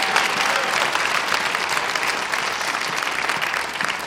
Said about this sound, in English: You know, there's a few people in this place that need to give more of a clap for that, because he has broken every single curse over your life.